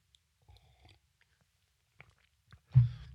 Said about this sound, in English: Just taking a little sip of an adult beverage, which is classified as coffee. Coffee.